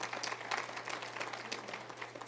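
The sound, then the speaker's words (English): An audience claps hands in a steady, dense burst of applause, moderately loud, filling the whole moment with a low hum beneath it and no one speaking. “I'll wait while you clap your hands there.”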